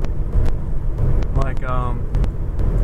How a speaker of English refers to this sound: Like for instance, three cars just passed by, and they all had four wheels, for one thing.